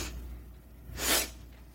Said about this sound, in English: A lot of sniffing tonight.